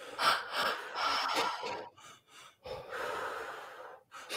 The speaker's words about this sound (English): Try to focus on deepening your breath, the belly, the chest, out through the mouth. You want to deepen the breath rather than the speed.